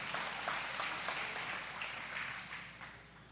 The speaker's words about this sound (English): So can you give me a round of applause on that one? All right, there we go.